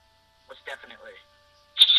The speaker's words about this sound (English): Ooh, money. Cha-ching! Nothing but the money.